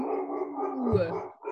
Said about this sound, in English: Speaking of barking wolves. My wolves are not happy.